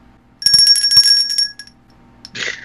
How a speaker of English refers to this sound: Or the bell.